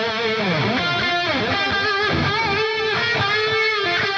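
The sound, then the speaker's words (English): A dry, distorted lead electric guitar coming straight off a Helix rig, lightly EQ'd toward the midrange, plays a sustained melodic line with sliding bends and vibrato, staying steadily loud throughout with no voices. “That's what it sounds like coming off the Helix.”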